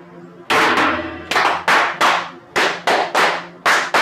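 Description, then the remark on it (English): A group claps in unison as a ritual toast fire, about ten loud, crisp claps struck together in an uneven, halting rhythm, each with a brief ringing tail, with no talking. “Brethren, right hand arms. Arms. Ready. Ready. Aim. Aim. Fire. Good fire. Fire all. Together, brothers.”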